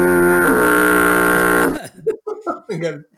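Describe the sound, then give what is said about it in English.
A loud, harsh game show buzzer drones steadily for nearly two seconds with a rich, raspy tone, then cuts off as people start talking. “I mean, should we get some buzzes in here or what?”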